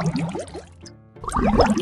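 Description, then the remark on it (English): Busy sloshing and bubbling of water, a brief lull, then another churning burst of splashing, like something plunging and thrashing in deep water: Harold, of Harold and the Purple Crayon, going over his head into an ocean. “But by then, Harold was over his head in an ocean.”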